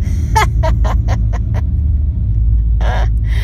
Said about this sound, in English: Somebody's on their motorcycle nearby. You can hear it.